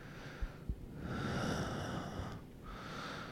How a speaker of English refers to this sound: You're bombing. Like, you're just like breathing really heavy into the microphone, which you gave me so much shit over for doing before.